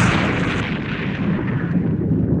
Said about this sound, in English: The next thing he knew, there was a large explosion, and he ran to where his wife and these five children had been.